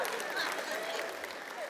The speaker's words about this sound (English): That was weak, ladies. I'm telling you right now. It's like courtesy applause.